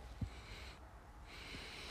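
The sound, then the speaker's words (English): Quiet sniffing as someone breathes in through the nose over a drink, two soft airy inhalations with a short pause between them and no talking. “Okay, so what am I sniffing right now?”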